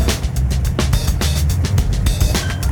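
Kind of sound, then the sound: vehicle, car engine running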